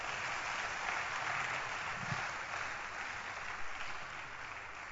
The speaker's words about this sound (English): And I'm sure the choir ministered very powerfully this morning. Clap your hands for the choir.